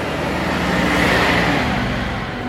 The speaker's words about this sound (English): So there's a bin truck going past, it's going to be noisy.